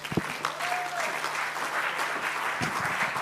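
Sustained audience applause, a dense, steady wash of many hands clapping at an even loudness throughout, with a faint tone and a few louder bursts mixed in.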